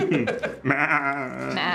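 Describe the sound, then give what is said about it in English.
A person loudly imitates a goat's bleat, a nasal, quavering "baa" held for about a second after a short vocal lead-in. “And it looks like a goat boy. Show me a goat boy.”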